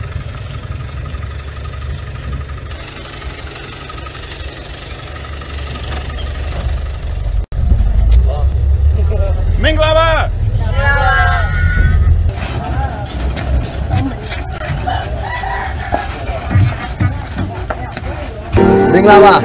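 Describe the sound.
A church bus engine idles with a steady, loud low rumble that runs the whole time, while voices talk intermittently over it.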